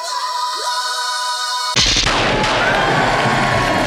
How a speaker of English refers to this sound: Whoa! Is the sound of a G6 jet exploding with the remaining members of the 1% on board, as seen in the pages of this week's Archer and Armstrong, the 1% from Valiant.